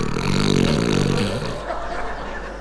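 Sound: voice imitating snoring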